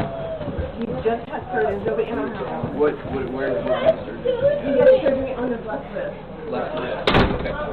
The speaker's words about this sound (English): In fact, the FBI just kicked in the door of a 22-year veteran. Well, here's the video.